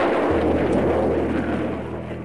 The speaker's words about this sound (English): Those of us in Britain who have listened to the roar that followed the explosion of a V-2 on arrival will certainly recognize it.